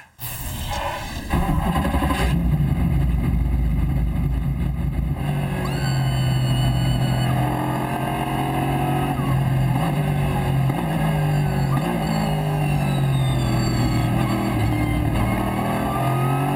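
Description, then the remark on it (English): A car engine roars steadily and loudly, its pitch climbing and falling as the driver pushes through gears, with a constant interior drone and no voices. “I know the car wasn't the fastest one, but I was still pushing the car a little bit.”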